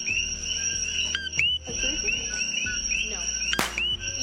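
Coqui frogs call in a steady chorus, repeated high, bright chirps with short upward sweeps overlapping one another above a low continuous hum, with no voices.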